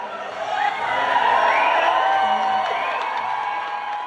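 A London concert crowd in March 2003 cheers loudly and continuously for about four seconds, a dense roar of many voices with high whoops and shouts rising above it before it eases slightly at the end.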